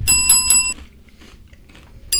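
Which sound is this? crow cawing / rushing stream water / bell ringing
bell ringing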